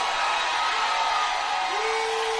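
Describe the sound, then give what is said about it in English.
An audience gives the Lord a shout of praise in a loud, continuous roar of many voices that holds steady throughout, with a single sustained tone emerging from the crowd noise toward the end. “Lift your voice and give the Lord a shout of praise.”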